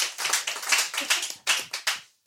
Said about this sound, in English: Clap it up.